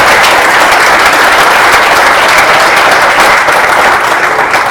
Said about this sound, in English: Well, before opening for questions, I just want to, if you could get a round of applause for